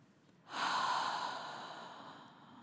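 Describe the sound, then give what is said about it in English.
A single long, deep breath drawn in through the nose into the belly during a guided meditation, starting abruptly and holding steady for about two seconds as a soft airy hiss, with no talking. “As we breathe in from the belly, breathing in through the nose, expanding the belly, getting that last little bit of air from the diaphragm, and then slowly breathing out.”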